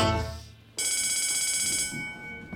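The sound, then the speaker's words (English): A low tone fades out, then a bright, shimmering bell rings suddenly, signaling when to switch to brushing another part of the mouth during the Chompers toothbrushing routine, and holds steady for about a second before slowly dying away. No one speaks. “To make sure you brush every part of your mouth, pay special attention to the bells that tell you when to switch your brushing.”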